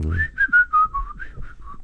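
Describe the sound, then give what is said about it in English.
Someone whistles a short melodic tune, about eight clear notes that drift downward in pitch, with a few brief gaps between phrases and no talking. “That's whistling past the graveyard.”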